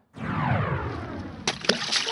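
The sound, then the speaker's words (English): A water tank bursts open: water gushes and splashes out in a loud, continuous rush, with a couple of sharp cracking impacts near the end. Loud, no voices. “Oh, my water tank!”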